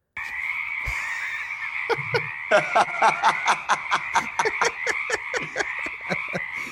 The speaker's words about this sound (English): Damn frogs everywhere.